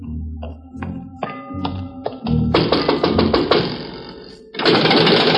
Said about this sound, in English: Night has fallen over Bombay Harbor, and the only footsteps heard on the mole are those of watchmen and police, and a few beggars too hungry to sleep.